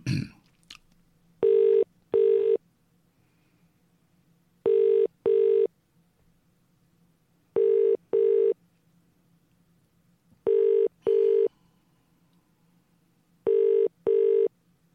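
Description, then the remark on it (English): A telephone ringback tone, heard while a call is placed to an MP's office, repeats its double ring five times at a steady rhythm, clear and even, with only a faint low hum between rings and no talking. “You can dial along at home, guys.”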